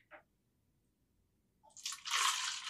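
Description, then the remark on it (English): A small clink, a brief pause, then wine splashes steadily into a measuring cup, the bright gush growing louder and continuing to the end. No one speaks. “I think this is honestly how much I would pour.”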